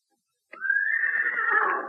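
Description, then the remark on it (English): Professor Bone's horse whinnies once, a loud neigh that starts abruptly after a moment of silence and holds with a wavering, breathy tone for over a second. “That's his horse, too.”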